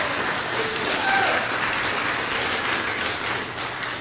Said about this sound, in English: I just said that to get the applause because I think it deserves applause too.